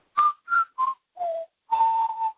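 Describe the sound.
Someone whistles the five-note motif from the film Close Encounters of the Third Kind, clear with no talking. Each note is distinct and separated by brief gaps, the fourth dipping lower and the final one held longest.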